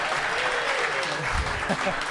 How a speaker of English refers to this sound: It's Mr. Harry Symeou. You got to keep the applause going. It's a long walk. It's a long walk.